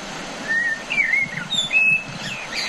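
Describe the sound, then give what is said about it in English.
Blackbirds sing in coastal scrub at Point Leo on the Mornington Peninsula, Australia, in short, clear whistled phrases over a steady, low outdoor rumble, several fluting notes rising and falling across the few seconds, with no voices present. “The sound of blackbirds singing in the scrub.”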